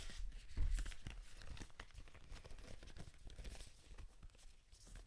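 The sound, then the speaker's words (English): A deck of cards being shuffled before cards are drawn, a steady run of quick, papery riffles and flutters lasting several seconds, with no talking. “Maybe you can hear me shuffling.”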